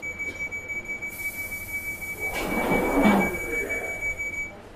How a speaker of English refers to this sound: This is a test track service to simulated platform. This train is ready to depart. Please stand clear of the doors.